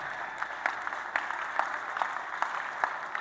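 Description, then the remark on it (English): An audience claps together, a dense wash of many hands with sharper beats landing in a steady rhythm, roughly two claps per second, at moderate volume and with no voices. “Can you clap your hand?”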